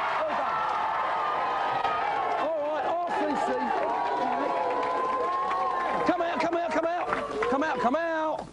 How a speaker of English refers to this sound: Right, give them a big cheer.